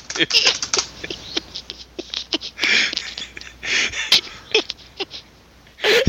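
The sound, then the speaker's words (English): Fingers drum out a rapid, uneven patter of sharp taps meant as a drum roll, sounding much like someone typing fast on a keyboard, with a few breathy bursts mixed in between. “I had no concept that was supposed to be a drum roll.”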